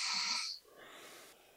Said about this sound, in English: So let's close our circle with some breathing. I love breathing work too,